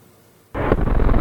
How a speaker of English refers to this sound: Destroyers open fire. Missiles launch. Warships shoot into the sea. It's a show of force ahead of China's military anniversary, training for war in the East China and Yellow Seas.